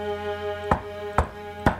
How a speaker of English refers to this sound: As the door was knocked on for the fourth time, I swung it open